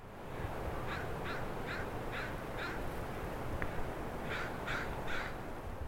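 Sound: crows cawing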